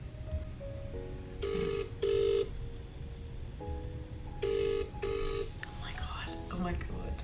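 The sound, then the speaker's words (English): An outgoing call's ringback tone sounds in two double-ring bursts, each pair a buzzy, steady electronic tone with a short gap, over a low murmur of background noise. “I'm gonna call him.”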